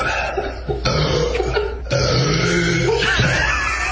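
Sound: loud burp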